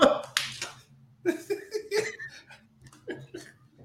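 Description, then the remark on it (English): A sharp slap of a person's hand against their own neck at a bug, followed quickly by a second smack, then the person laughs and talks in a breathy, animated way. “I slapped the fuck out myself on this screen.”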